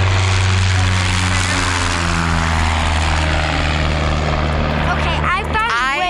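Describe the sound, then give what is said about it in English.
A small propeller plane drones loudly overhead, its steady buzzing engine filling the air with a deep humming tone, while a voice briefly speaks near the end. “Love the little airplanes that fly over.”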